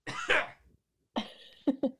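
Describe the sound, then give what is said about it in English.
A harsh throat-clearing rasp, made while preparing to do a Larry King impression, a brief pause, then a gravelly hacking cough followed by two short sharp coughs in quick succession. “Excuse me while I not clear my throat, but clog it more.”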